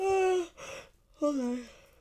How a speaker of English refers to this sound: Hold on. I'm yawning. So much stuff, obviously. I'm keeping that in. No. I'm not yawning because Rita's boring. I'm yawning because I just woke up.